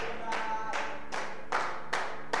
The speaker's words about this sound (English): Oh, clap your hands. Pam, pam, pam, pam, pam, pam, pam, pam, pam. All ye people and shout. Clap, clap, clap unto God.